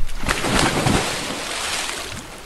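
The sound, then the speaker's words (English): Water splashes and churns as children dive into a natural rainforest pool at the Afuau waterfall, with a few sharp bursts in the first second settling into a steady, sloshing rush. No voices are heard. “The second they all saw the natural rainforest pool, they dove into it.”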